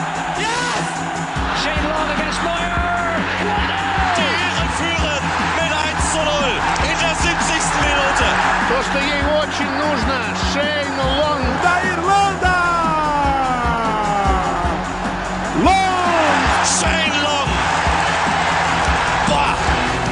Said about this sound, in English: Congratulations, take the applause of that crowd.